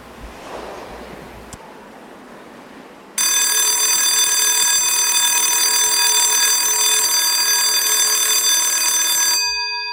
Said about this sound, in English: Saved by the Bell.